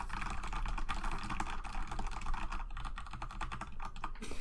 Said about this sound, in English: So I got this keyboard. It is like a Corsair Strafe RGB. Mm-hmm. It is backlit and it is a mechanical keyboard. So it is makes clickety clack noises like such.